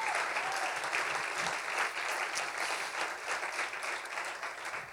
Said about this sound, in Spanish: Dele un aplauso a nuestro Dios.